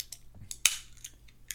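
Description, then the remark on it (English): A can of Diet Dr. Pepper snaps open with one sharp crack and a short burst of fizzing hiss, preceded and followed by a few faint small clicks, with no one talking. “So, as always, let's open the Diet Dr. Pepper and get right into it.”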